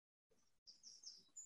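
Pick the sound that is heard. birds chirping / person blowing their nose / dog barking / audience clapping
birds chirping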